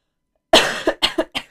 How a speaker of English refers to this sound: I have to cough. Hold on.